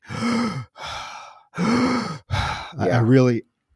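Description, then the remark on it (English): A voice imitates a film killer's heavy, muffled breathing through a mining mask: five loud, raspy breaths with groaning tones, alternating in and out with brief pauses, the last one wavering and strained. “I also like the sound design, because anytime the killer is stalking or on screen, we do get the heavy breathing through the mask, through the mining mask.”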